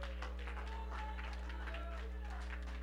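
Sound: audience clapping hands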